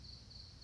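A steady, high-pitched insect drone hums continuously, the buzzing of a cicada, fairly faint and unbroken with a slight wavering pulse, over a low background rumble and no talking.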